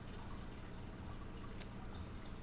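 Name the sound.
aquarium water trickling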